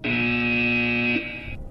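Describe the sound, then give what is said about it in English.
A loud game show buzzer blares once, a harsh, steady electronic buzz lasting just over a second before cutting off into faint room noise. No one talks over it. “Buzzer.”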